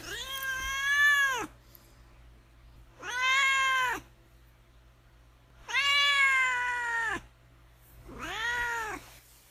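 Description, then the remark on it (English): A pet cat named Duarte meows four times in drawn-out, wavering calls with short pauses between, fairly loud, over a faint steady hum with no talking. “And now we will move on to Duarte's Corner, where my cat Duarte will give his opinion about the book.”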